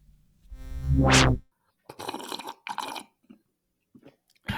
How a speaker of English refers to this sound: Is that a good slurp? That's right. Yeah. No mug club slurp there, but yeah.